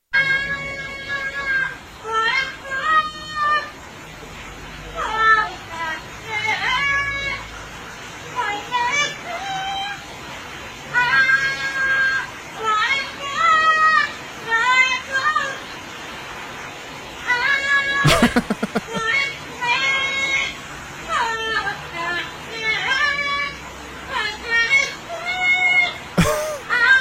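A parrot sings a pop song in shrill, squeaky, wavering phrases, rising and falling in short bursts for nearly half a minute, broken by a couple of sharp clicks.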